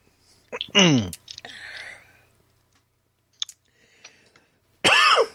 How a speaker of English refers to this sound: The cough, by the way, is the cold.